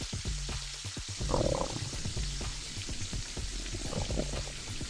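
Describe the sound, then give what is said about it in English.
A loud, wet stomach gurgle rolls on for several seconds, with irregular bubbling pops and low croaking grumbles and no voices over it. “Come on, man, my stomach sounds like a burping frog.”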